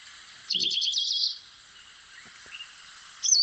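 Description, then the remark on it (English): An African pied wagtail sings a quick run of bright, high chirps that slides into a short twittering trill, then adds one more sharp call moments later, over a steady hiss of running water. “They go into a beautiful song sometimes as well. Right, so that's the pied wag, that's the pied wagtail.”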